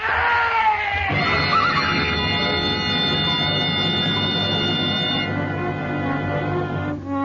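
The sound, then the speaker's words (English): A horse whinnies loudly and shrilly as it stumbles and falls on a narrow trail, a long strained cry held for several seconds, over a dense rumbling scramble, with no voices. “The horse stumbled.”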